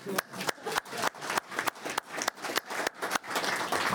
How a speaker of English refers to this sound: So, We're going to have a round of applause for the staff that came back.